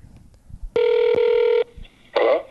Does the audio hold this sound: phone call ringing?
yes